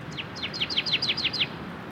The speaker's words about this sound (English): When dawn arrived, I was sorely tempted to sleep in, but the songs of a distant bird roused me into action, and soon I was recording a canyon towhee sounding off in the breeze.